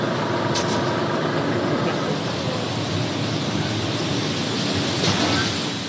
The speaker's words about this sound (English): Grain pours into a grating in the ground, making huge clouds of dust.